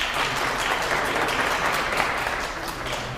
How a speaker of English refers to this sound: So if you're a Talking Book patron, clap your hands. Very good. If you're a friend or family member of a Talking Book patron, clap your hands.